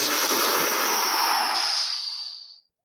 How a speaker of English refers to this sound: Smoke sound effect. It's the whole thing. It seemed really smoky and like the glittering bubbles. That sort of thing.